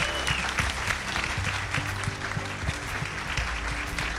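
A crowd claps steadily in a dense, continuous round of applause, loud and sustained throughout, with a few faint voices mixed into the clatter of hands.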